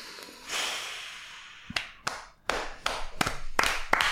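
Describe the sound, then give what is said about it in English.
A person claps their hands about seven times at a fairly steady pace, each clap a sharp, bright smack over a soft background hiss, with no talking. “I'll clap.”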